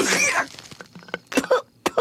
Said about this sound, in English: … coughs and chokes and spits out that little clump of dirt